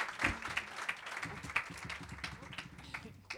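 An audience applauds with steady, dense clapping for a few seconds at a moderate level, with a few voices murmuring underneath.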